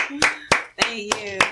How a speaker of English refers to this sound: clap it up one time for … real quick